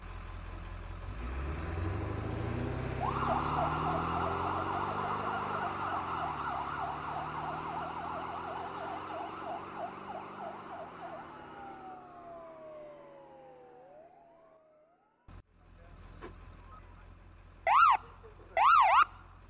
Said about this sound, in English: They loaded the stretcher onto the ambulance and sped away.